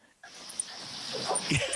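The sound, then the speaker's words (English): A dog whimpers and gives a short yelping bark while attacking its owner during an interview, over steady scuffling, rustling noise, with a few high whiny squeaks toward the end. “Is your dog attacking you right now?”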